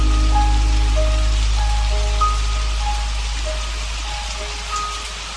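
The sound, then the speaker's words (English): Steady rain falls in a continuous hiss, with soft sustained musical tones drifting over it and no one talking. “Get ready to sing in the rain.”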